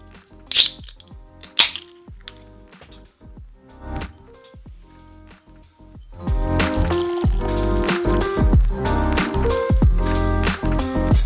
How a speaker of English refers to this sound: Straight from pouring into the glass, there's a lot of carbonation. There's a really high head here. It's filled up like 3/4 of the glass.